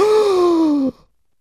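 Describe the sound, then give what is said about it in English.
A single voice imitates the gasp of a crowd at a forum at the University of New Hampshire, a loud, drawn-out 'ooh' that slides gently downward in pitch for nearly a second before cutting off abruptly into silence. “And you should have heard the gasp in the crowd when I was asked if I would support student representation on the school board.”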